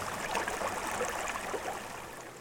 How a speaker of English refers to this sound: You can hear the water flowing.